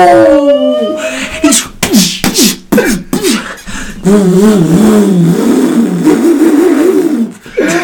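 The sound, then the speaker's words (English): A voice mimics a car engine revving, with rising pitch sweeps and choppy bursts early on, then a sustained warbling drone, loud, with no other sounds around it. “I'm sorry, it's just my pretend car.”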